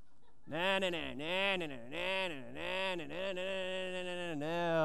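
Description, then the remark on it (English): A man's voice imitates a turkey gobbling, producing a rapid, warbling series of about five rising-and-falling gobbles in one continuous, fairly loud burst. “The turkeys live down here. Gobble, gobble, gobble, gobble, gobble.”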